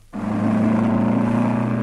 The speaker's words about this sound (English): Lois drives the taxi at top speed.